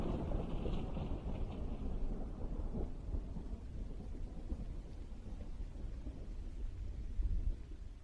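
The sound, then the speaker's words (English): Distant thunder from the east, with no rain falling, rolls in a long, low, continuous rumble that swells slightly near the end, with a soft hiss of air above it and no voices. “I can hear faint thunder from far away. No rain at all, but it's rumbling from the east.”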